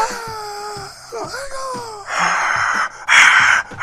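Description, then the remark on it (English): A single voice imitates a roaring crowd by breathing hard into a microphone, starting with a wavering, moaning wail and then shifting into loud, breathy rushing bursts. “Does it sound like a crowd, or does it just sound like me breathing hard into a mic?”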